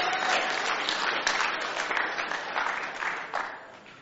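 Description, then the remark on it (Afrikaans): An audience breaks into sustained applause, a dense wash of many hands clapping at steady volume throughout, with no voices rising above it. “Goeie plek om te klap nou.”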